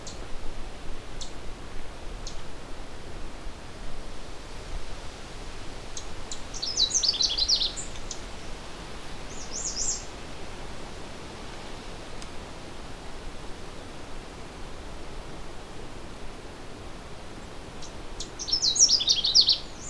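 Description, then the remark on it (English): A Canada Warbler sings two brief, fast, warbling whistled phrases, one early and one near the end, each cheerful and moderately high, set against a steady hiss of background noise. “It's a fast, short, warbly song with a bit of whistly cheeriness to it.”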